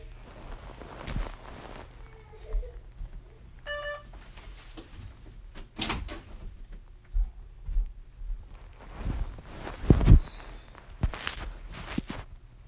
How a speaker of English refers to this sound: One second, I need to shut this door.